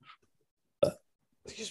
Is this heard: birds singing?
no